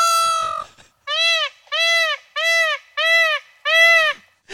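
Loud, nasal calls of a loose peacock: one drawn-out cry followed by five shorter wailing honks repeated in a steady rhythm, with brief gaps between each and no talking.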